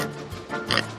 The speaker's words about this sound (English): Pig!